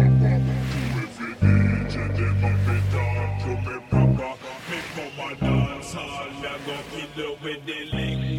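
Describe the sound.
A slowed, muffled singing voice drifts over a continuous low wash like ocean tides, the watery rumble steady and close beneath the filtered vocal throughout.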